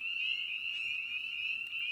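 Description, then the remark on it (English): A chorus of spring peeper frogs calling, their high, shrill peeps blending into a steady, ringing whistle that holds at an even loudness throughout, with no voices. “the spring peeper regularly has to endure sub-freezing temperatures during their breeding season”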